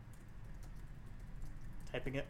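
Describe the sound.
Soft, quick clicks of typing on a computer keyboard tap along in an irregular rhythm over a low background hum, with a voice briefly starting to speak near the end.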